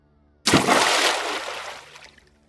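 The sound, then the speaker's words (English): A sudden, loud splash of a body falling into water, followed by a second or so of violent thrashing, churning and sloshing that gradually fades. No voices. “There was the splash of a body falling into water, followed by violent thrashing, like someone was drowning.”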